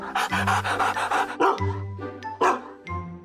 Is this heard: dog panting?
yes